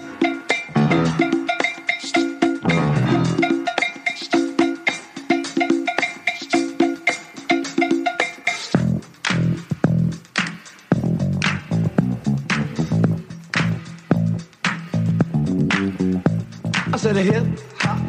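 A hip hop instrumental intro with no vocals: steady, pulsing synth-like chords for the first half, then punchy drum hits and rhythmic stabs drive a loud, busy groove.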